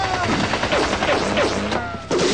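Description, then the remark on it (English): A loud, sustained volley of gunfire from a group of gunmen on a penthouse roof, many rapid shots overlapping into a dense crackling barrage, with a brief dip near the end before the firing surges again. “That suit of armor had better be bulletproof.”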